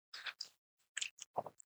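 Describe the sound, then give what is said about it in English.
Someone takes a sip of a drink, a handful of short wet slurping and swallowing sounds in quick bursts, with no talking. “I'm going to take one more sip.”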